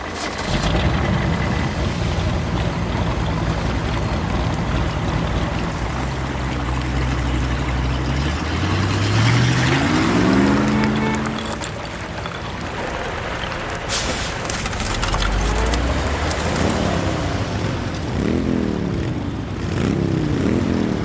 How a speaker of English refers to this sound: I was layering about 40 different types of motor vehicles, all having crashes with bits of ice cracking